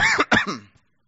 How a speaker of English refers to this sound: I've been doing this for weeks. Although my wife will be happy to say that at least I'm coughing in my sleeve rather than coughing all over the house.